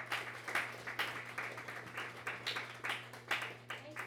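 Audience applause: a steady, moderately quiet patter of many hands clapping for about four seconds, swelling and dipping slightly, with a low electrical hum underneath.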